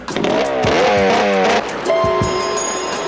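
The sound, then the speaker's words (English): A motorcycle engine revs hard several times, its pitch climbing and dropping in quick surges, loud, with a steady high whine settling in toward the end. “Wonder Woman realizes to herself, hey, there's a motorcycle Ex Machina here”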